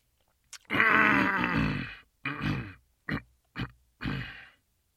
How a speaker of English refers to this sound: He had cleared his throat. That was him clearing his throat, not me.